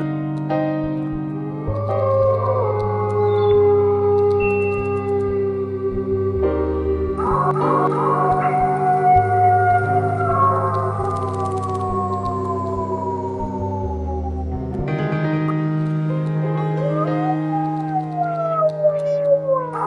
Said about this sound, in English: In the fall, it's beautiful out, but at night, the coyotes would get so loud and howl all around, and I thought it was awesome.